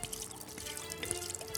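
Gasoline pours out in a steady, continuous stream, a moderately loud liquid splashing and gurgling that runs unbroken for a moment with no voices.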